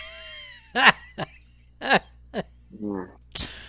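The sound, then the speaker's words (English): A quick series of sharp, explosive sneezes, about five bursts in under four seconds, loud, with a brief voiced, nasal sound between the last two and no talking. “bless you, man. God bless you.”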